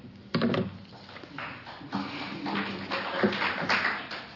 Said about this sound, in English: So I get the clapping since I'm the last one to go then.